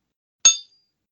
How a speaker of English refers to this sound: You have those magic Waterford crystal glasses. I thought I was making a better sound last week. Sorry. It's the liquid levels. You have to experiment with it.